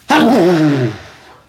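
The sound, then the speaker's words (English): One loud sneeze bursts out abruptly with a sharp, breathy onset and trails off into a voiced, falling-pitched tail that fades within about a second. “Don't worry, sneezing is not a symptom of coronavirus.”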